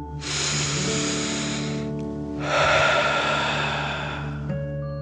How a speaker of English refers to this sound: Breathe in through your nose, filling up your belly, and then out through your mouth, pretending you are breathing fire. Ready? Deep dragon breath in and out.